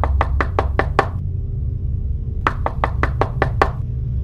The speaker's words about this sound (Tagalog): Alas 12 ng hating gabi. Nagising si Unyo sa mga katok sa pinto.